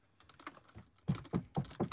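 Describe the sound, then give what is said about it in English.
Keyboard typing during a quiz: a run of light, quick key taps followed by four heavier, evenly spaced clacks, with no voices over it. “still typing, so”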